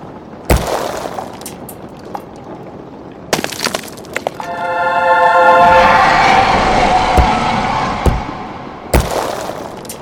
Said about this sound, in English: Looks like I dropped it and stomped on it, then exercised the remains and smashed it some more.